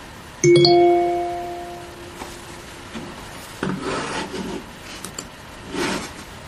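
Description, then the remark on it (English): A single bell is struck once, its clear ringing tone fading over about two seconds, followed by soft rubbing and scraping noises. No one speaks. “Yeah, maybe this is the bell to end the talk.”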